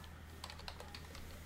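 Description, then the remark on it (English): Rapid, uneven tapping of keys on a MacBook Pro laptop keyboard, a quick series of sharp clicks over a low steady hum, with no voices. “You got the loudest keyboard in the solar system.”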